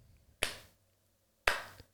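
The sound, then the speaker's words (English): Two slow, deliberate, sarcastic hand claps by an older boy, about a second apart, sharp with a short ringing decay after each, otherwise quiet with no talking. “Her story was interrupted by the older boy clapping sarcastically.”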